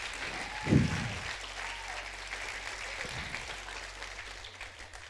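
A crowd claps steadily and continuously, a dense wash of many hands filling the space, with a brief low thump near the start and faint murmuring underneath.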